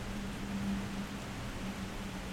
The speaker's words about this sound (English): because that's why I'm sat outside recording in the rain, is so that you can hear, hopefully, you can hear the sound of the rain. And it's raining. You can also probably hear the sound of the cars driving by. You can hear the sound of the creek.